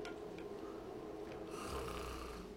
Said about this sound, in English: Hey, stop it. You'll be leaking, man. Stop it. No snoring. Wake up.